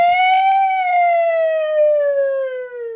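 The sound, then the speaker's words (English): A person imitates what a Bigfoot call might sound like with a loud, sustained siren-like wail that holds one high tone for about three seconds, then slowly sinks in pitch toward the end, with no talking around it. “Sound like a siren. It's a siren.”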